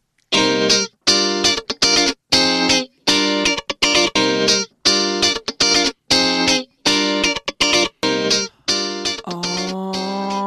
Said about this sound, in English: I'll tell you who it is after the amazing theme music.